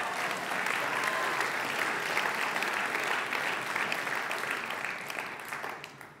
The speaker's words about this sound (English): We should have those stand up and applaud.